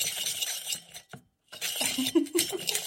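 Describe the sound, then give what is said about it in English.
A hand-cranked vegetable slicer, held on a chopping board with large electrical clips, turns and slices vegetables very thinly for chutney with a gritty, rattling crunch and faint clinks. It stops briefly, then resumes with squeaky, rhythmic grinding. “And then we push that down the hole and turn the handle.”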